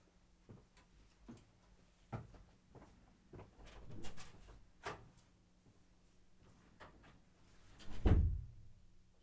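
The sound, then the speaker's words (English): A locked door being unlocked and opened to let someone in: a string of small metallic clicks and rattles, then a louder clunk and creak near the end, with no one speaking. “Let me step out, and I think we locked the door, and, you know, Santa famously has problems with locked doors, so let me go let him in.”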